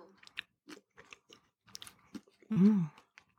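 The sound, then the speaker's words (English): Crunchy chewing, a quick irregular series of crisp crunches as a dark mint chocolate square, like an After Eight, with crunchy cookie-like pieces in it, is bitten and chewed, followed by a short voiced murmur near the end. “There's crunch in it.”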